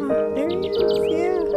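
Songbirds sing busily in a dense, overlapping chorus of quick chirps and whistles, steady throughout, with a low harmonic hum running underneath.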